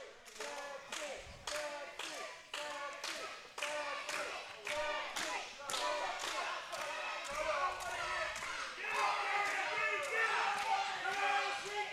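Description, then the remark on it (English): A crowd at a tournament bout cheers for Team Sexy as the second round begins, a loud, steady roar of many voices cheering and shouting together, with sharp claps or thuds punctuating it at irregular intervals, building slightly louder toward the end. “The crowd showing a lot of love to Team Sexy here.”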